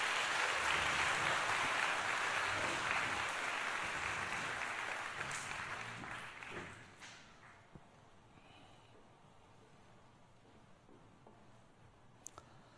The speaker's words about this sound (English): You guys are dismissed. Can we give them a round of applause for helping us out today?